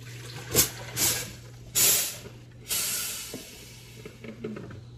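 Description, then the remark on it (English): A coffee maker brewing a batch of coffee hisses in several irregular bursts of steam, some short and sharp, others longer and sustained, over a steady low electrical hum, with no one talking. “That's going to be a good batch of coffee, I know, and I can feel it.”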